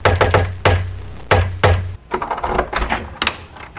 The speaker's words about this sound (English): Meanwhile, a knock at the door is heard.